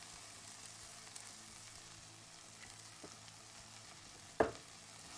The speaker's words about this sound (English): More oil is going to go in because I could tell. What we're trying to do is we're trying to do a very, very light fry on our corn.